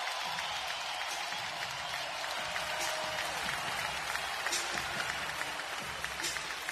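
A large arena crowd delivers sustained applause, a dense, steady wash of clapping and cheering that holds loud and unbroken for several seconds, with scattered shouts rising from the crowd.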